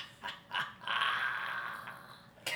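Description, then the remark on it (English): A person's voice imitates a werewolf's growl as the werewolf bites down on Ediar and pulls away: a couple of short gruff bursts, then a sustained, raspy snarl for over a second, ending with one more brief grunt. “So the werewolf bites down on Ediar, and it pulls away, and it growls and laughs.”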